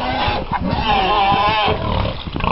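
pigs grunting

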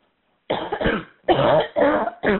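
person coughing

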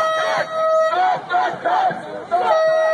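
protesters chanting

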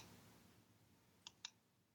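typing on a keyboard

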